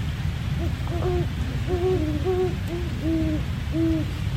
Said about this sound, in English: I'm lying in my tent at French Creek State Park in southeastern Pennsylvania. And there are two great horned owls that have been calling to each other for the last, I don't know, at least an hour.